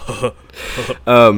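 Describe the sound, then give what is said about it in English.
A voice imitates the belching breath of a smooth white alien creature: a few short raspy huffs and a breathy rush, then a louder, drawn-out guttural belch-like groan. “It's it has this really interesting breathing cadence where it's belching almost, where it's it's like Butthead or something.”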